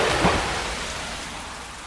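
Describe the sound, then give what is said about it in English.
Heavy pouring rain fills the scene with a dense, steady hiss, a brief louder swell near the start, then an even downpour that fades only slightly. No one speaks. “It's only pouring rain.”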